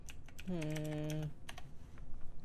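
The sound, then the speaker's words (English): Quick, irregular clacking of keys on a computer keyboard, fairly loud, with a short hummed voice tone sounding over the typing partway through. “Sorry, guys, I'm going to be typing.”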